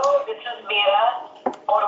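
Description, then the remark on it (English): A mobile phone alert chimes in a bright, tonal pattern lasting a couple of seconds, with a brief knock-like click near the end before the tone resumes. “Why is my phone going off?”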